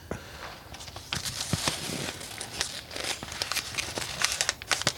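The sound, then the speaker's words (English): Paper notes being crumpled up, a steady run of crisp crinkles and sharp crackling bursts for several seconds, fairly loud and uneven in rhythm, with no voices. “I didn't know you could crumple digital notes.”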